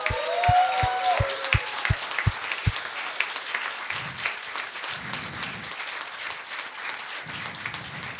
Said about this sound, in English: Why don't we just say congratulations again by cheering for them.